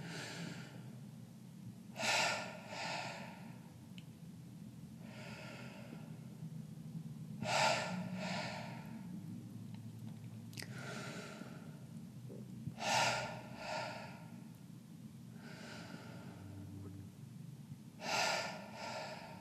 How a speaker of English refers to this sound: You're going to inhale. And then exhale. You can inhale, your navel is going to expand. You're going to exhale. Keep breathing that way. Focusing on your belly.